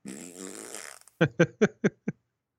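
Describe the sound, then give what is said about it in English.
A voice blows a long, sputtering mouth fart, then follows with five short, evenly spaced bursts that taper off, fairly loud with no talking. “I make fart noises with my mouth.”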